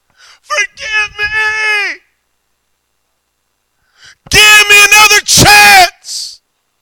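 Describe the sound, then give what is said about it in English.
A voice imitates people hollering, screaming and wailing in anguish, with a long drawn-out cry, a pause, then louder, strained howls and a final rising wail, forceful. “They will be hollering, screaming, wailing, God!”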